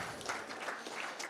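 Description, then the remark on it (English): A crowd claps together in a steady, dense patter of many hands, fairly quiet and continuous throughout, with no voices standing out, applauding the kids leaders who work with the children each week. “Why don't we give them a clap?”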